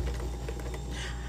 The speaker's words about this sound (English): C'est le fridge noise. I'm here because I'm in my kitchen because I'm trying.